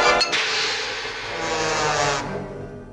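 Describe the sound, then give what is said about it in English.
A bright, loud cymbal crash, used as the sound of a frying pan hitting Tom's face in a Tom and Jerry cartoon clip, opens with a couple of quick taps, then rings as a shimmering hiss for about two seconds before cutting off and fading out. “In this Tom and Jerry clip, the sound of a frying pan hitting Tom's face is played by a cymbal crash.”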